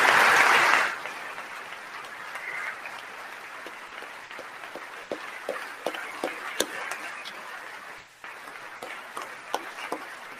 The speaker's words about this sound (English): Is that him clapping that I hear?